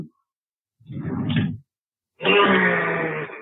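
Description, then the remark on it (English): A woman's short, rough throat-clearing is followed after a brief pause by a man in his office imitating a horse's whinny, a loud, strained, harmonically rich cry held for over a second. “You hear her clear her throat, and then he follows with the whinny.”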